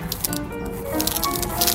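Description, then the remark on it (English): Dry rice grains shaken by a theatre sound-effects man in a steady, continuous hiss of tiny rattling patter, imitating rainfall, with bright crackly bursts that swell slightly toward the end. No voices. “That's rain.”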